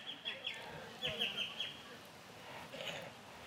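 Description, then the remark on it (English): Birds sing in quick bursts of high, bright chirps and trills that come in clusters and then pause, set against a low, steady background murmur. “And then he turns to the people who are present before him and he orchestrates the birds to sing simultaneously as he's speaking.”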